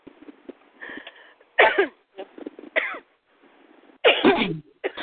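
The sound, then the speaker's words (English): A fit of sneezing: about four sharp, loud bursts in quick succession, separated by quieter breathy inhales, with no talking. “I got the cord of the sneezes all of a sudden.”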